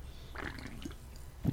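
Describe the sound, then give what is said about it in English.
A short slurp as someone sips a giant black cherry seltzer, followed by a couple of soft swallowing gulps. It's quiet, with no talking. “As I sip my giant seltzer black cherry.”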